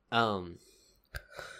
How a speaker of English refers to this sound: You know, I did not mean to yawn when I was saying that.